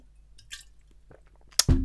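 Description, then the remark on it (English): Someone sips water, with soft wet mouth sounds, a sharp glassy clink near the end, then a louder gulping swallow. “Can I have another sip of water before I tell you how great you are?”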